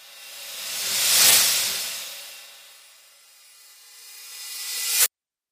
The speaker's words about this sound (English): Let's have a listen to what these cymbals sound like without the ping pong delay.